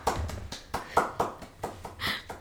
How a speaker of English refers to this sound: Why are you clapping?